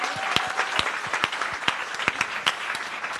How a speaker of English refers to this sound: Lastly, let's give another round of applause to our beautiful panel. You're amazing.